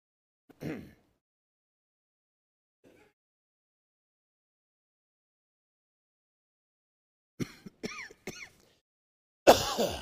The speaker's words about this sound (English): I know you didn't pay good money to come in here and watch a guy cough. I'll get through this in just a minute.